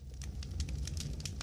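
A bonfire crackles steadily with irregular sharp pops and snaps over a low, constant rumble of burning, with no one talking.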